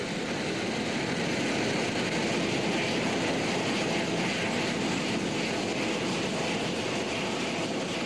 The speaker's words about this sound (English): Unfortunately, of course, it had to be curtailed because the Harrier jet was arriving.